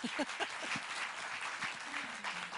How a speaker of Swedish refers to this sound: ge en applåd.